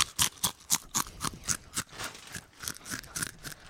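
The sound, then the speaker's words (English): Someone crunches a crisp, a rapid string of about a dozen sharp, crackly bites and chews in uneven rhythm, fairly loud, with no talking. “Final crunch in 3, 2, 1.”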